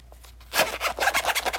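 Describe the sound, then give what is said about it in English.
After a brief hush, the zipper of an Aukey case is pulled open with a bright, ratcheting rasp that pulses quickly for about a second, moderately loud, with no one talking. “number two right here, look, listen to the zipper.”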